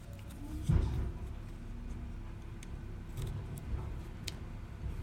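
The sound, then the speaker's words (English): A garbage truck rumbles outside, its low engine drone muffled and steady, with scattered faint metallic clanks and ticking clicks; one brief louder thump early on, and no one speaking. “Yeah, our trash truck is here. That's what you're hearing in the background.”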